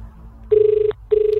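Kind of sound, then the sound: signal or alarm, phone call ringing unanswered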